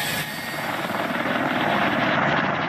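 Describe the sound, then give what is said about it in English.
A loud Chinook helicopter at Kabul airport, Afghanistan, trying to clear a crowd, roars steadily, its twin rotors producing a rapid, rhythmic thudding chop beneath a broad wash of engine and wind noise, with no voices. “When Chinook helicopters couldn't clear the crowd, shots were heard.”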